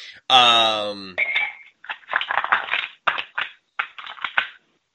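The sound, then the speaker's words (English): Many ice cubes clink and rattle in a glass as a drink is being made, in quick, irregular bursts of bright, hard taps, preceded by a short tonal, voice-like sound at the start. “I'm waiting for you to make that glass of Coca-Cola that you've, like, I don't know how many ice cubes you got in there, but it's a lot.”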